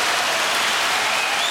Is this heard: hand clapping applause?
yes